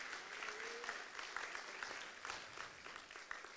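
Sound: audience hand clapping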